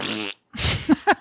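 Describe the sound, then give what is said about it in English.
A loud fart noise: a buzzy, drawn-out blat, a brief pause, then a breathy sputtering burst ending in two short puffs. No one talks. “One year later, fart noise choice for both of us.”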